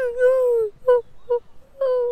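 A collared dove coos in a clear run of notes: a long drawn call, two short clipped notes, then another long one, with nothing else in the background.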